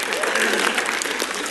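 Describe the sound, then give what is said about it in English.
A crowd applauds steadily for a brief moment, a dense wash of many hands clapping at once, fairly loud, with no voices standing out. “Yeah, people clap.”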